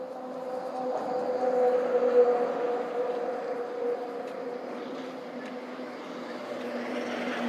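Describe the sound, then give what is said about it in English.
A heavy truck rumbles past outside, its low engine drone swelling to a peak early on and then holding steady as it moves along, with no voices present. “I got quiet because the truck was coming.”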